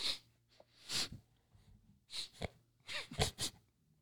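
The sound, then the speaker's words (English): A person imitates loud sniffing, a few sharp, breathy snorts coming in separate bursts with short pauses between them and no talking. “They sniffed him. Sniff.”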